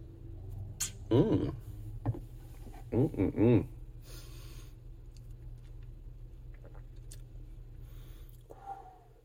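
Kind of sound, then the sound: food or drink, sipping mezcal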